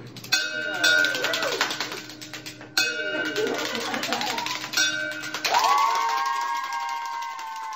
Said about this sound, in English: ringing the bell on his last day at MD Anderson Cancer Center in Texas. He just completed successful treatment for stage 4 bone cancer.